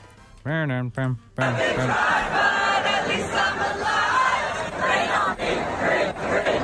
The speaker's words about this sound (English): Well, here's what it sounded like when the fans were singing to the rain.